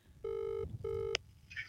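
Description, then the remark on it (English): Two steady electronic ringback tones of an outgoing phone call, each about half a second, separated by a short gap, heard fairly clearly over faint low background rumble, followed by a brief click. “Here we go. It's ringing.”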